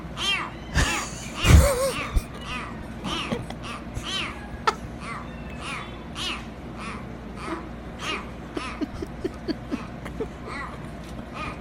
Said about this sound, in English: Kitten hasn't quite figured out how to meow, so he quacks instead. Do you want to hear this, yeah, this little adorable kitten? Okay. This little adorable kitten. Okay. This is a new kitten trying to meow. Meow.